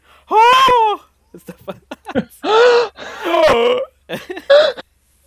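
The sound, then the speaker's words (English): Several people let out loud, drawn-out gasps of horror one after another, exaggerated, with short breathy catches between the voiced outbursts and no speech. “I guess on that note, everyone gasps in horror.”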